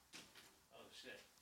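A door that someone is locked behind, with no key, is opened with a short rattling clatter followed by a faint creak, quiet, lasting just over a second.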